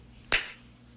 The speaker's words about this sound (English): Okay, we'll do the clap thing one more time. Just, I don't even know if it's going to work, but it's might as well try.